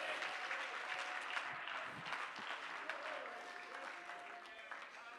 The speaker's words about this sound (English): Clap your hands all across this place if you're thankful tonight.